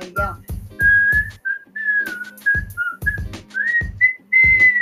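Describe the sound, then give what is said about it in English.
A clear, melodic whistled tune by the singer, heard before the song's fade, carries over a steady, thumping beat and backing music, the whistle rising and falling in short phrases without any singing. “He had intended to return to the studio at a later date to add words in place of the whistling”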